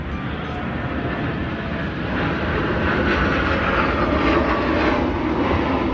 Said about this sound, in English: Oh, look. Oh, great. It's Jet Noise. I'm so glad you guys are here to experience this. Check this out.